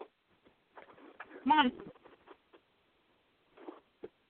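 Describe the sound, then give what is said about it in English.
A pet bird gives one loud, ringing call, surrounded by softer chirps, scratchy rustling and light tapping clicks. “Sorry, he got jealous because the other bird was out earlier today, so.”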